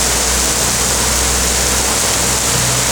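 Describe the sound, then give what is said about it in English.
Heavy rain pouring down in a thunderstorm, a loud, dense and unbroken hiss that fills the whole clip without letting up. No one speaks. “Just before the heavens have opened. Oh, it's going bust.”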